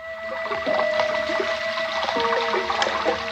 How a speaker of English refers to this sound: That's the way it sounded when it rained. Because the room was just below gutter level, and the rainwater rushed by the room's only window.